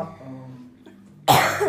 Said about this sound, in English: We have a lasting cough